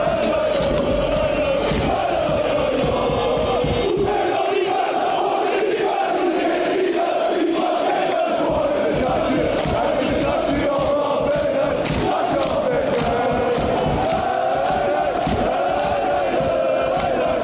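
A large football crowd chants together in a sustained, rhythmic roar, voices rising and falling in unison with steady loudness throughout, no single voice standing out.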